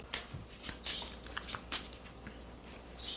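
Cards being shuffled before drawing for the known criminal in a game: a quick series of soft, crisp riffling bursts and flicks, fairly quiet, with no talking over them.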